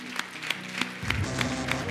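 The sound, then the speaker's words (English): A church audience gives God a round of applause after a closing prayer, with steady, evenly spaced claps at a moderate level, and a low sustained tone sits underneath the clapping. “Everybody, let's just give God a round of applause.”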